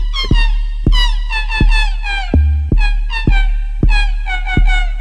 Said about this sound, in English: So anyway, I think it's also the cat meowing sound that is really kind of putting, I would say, the partner off.